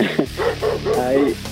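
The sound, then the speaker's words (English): A dog named Daisy barks several times in quick succession, short yappy bursts followed by a longer drawn-out bark, moderately loud, with no one talking over it. “I've seen you so many times on TV that even my dog, Daisy, has started to recognize you.”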